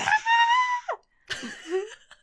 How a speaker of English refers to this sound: I'm glad you screamed because that's like our Halloween episode.